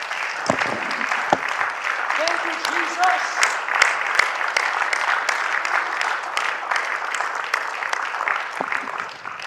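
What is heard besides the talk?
audience hand clapping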